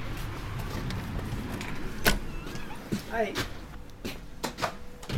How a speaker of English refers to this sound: This is Kaplan's Army Store in St. Johnsbury.